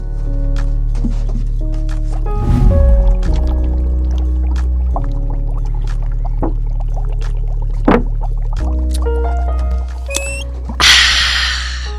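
Water is poured for drinking amid light clinks and handling noises, ending in a brief rushing gush, with a steady low hum underneath and no talking.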